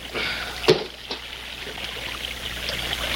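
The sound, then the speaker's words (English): A heavy rock is thrown into wet quicksand at a creek and drops in with a sharp, thick plop. A softer second glug follows just after, then a steady low gurgling and trickling as it settles. No one speaks. “That sand swallowed that rock like it was starving.”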